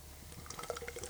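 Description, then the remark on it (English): Beer, a limited-release collaboration, glugs and splashes into a glass in a steady, bubbly pour, fairly quiet, with fizzy high-pitched trickling throughout the short burst. “Let's take get the pour here.”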